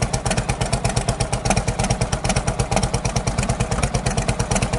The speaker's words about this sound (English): Almost sounds like two engines. That's a good drummer beat right there. Isn't that great? And what a symphony.